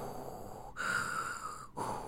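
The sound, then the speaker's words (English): A voice imitates Michael's heavy, rasping breathing, like a scuba machine: hissing breaths drawn in and pushed out in a slow, steady rhythm, with brief pauses between strokes and no talking. “Why does he breathe like that? It sounds like he's using, like, a fucking scuba machine.”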